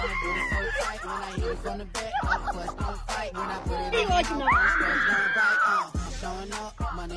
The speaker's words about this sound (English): She's screaming bloody murder, literally screaming bloody murder.